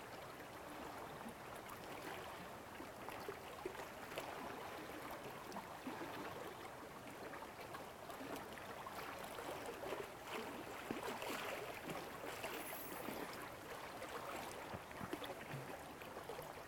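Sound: flowing water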